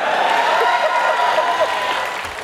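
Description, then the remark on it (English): A studio audience applauds and cheers, a dense, steady wash of clapping with scattered voices mixed in, loud and continuous before easing slightly at the very end. “Firstly, you should never have to ask an audience to cheer for you, like for something you've said.”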